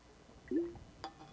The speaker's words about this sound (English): So drink some water, you blockhead. This is me on behalf of your mother saying this to you, and I'm going to drink some water right now, too.